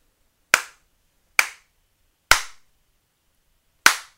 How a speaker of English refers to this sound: I got some slaps to dole out. Out of five slaps, I give this song